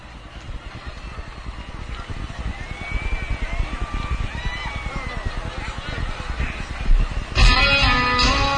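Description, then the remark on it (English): A helicopter's rotor beats out a rapid, steady low thumping that grows slightly louder, faint wavering tones above it, until a brighter, louder wash of sound abruptly cuts in near the end, in a video recorded in Las Vegas on October 1, 2017, before music started. “It's a helicopter you hear before the music started.”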